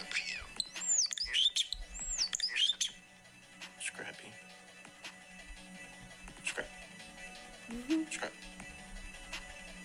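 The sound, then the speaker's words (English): Several quick, high whistled chirps and swooping calls from a bird, clustered in the first few seconds, followed by scattered fainter notes over steady background noise. “Oh, I think I know what this bird is.”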